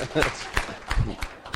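A brief, sparse round of applause from an audience, with scattered, irregular claps of moderate loudness rather than a full, dense ovation.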